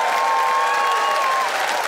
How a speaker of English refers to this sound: Audience, it is up to you, Ottawa, to pick a winner by applause.